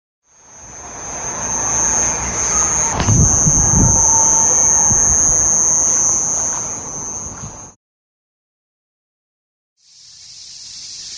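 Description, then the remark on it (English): A piercing, high-pitched electronic-like whine, an alleged recording of the Havana syndrome sound, drones steadily and loudly for several seconds, insect-like, then cuts to silence before another shrill buzzing, a cicada recording, starts up. “I'll just say right off the bat that the alleged sound recording of Havana sounds way more like an individual up close and personal cicada sound than it does more a washed out field of cicadas in the distance surrounding you type of sound.”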